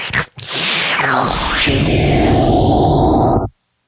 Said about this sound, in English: Now, please find me a sucking fucking vacuum sound.